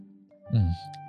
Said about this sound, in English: Okay, let me take a sip of water for this one.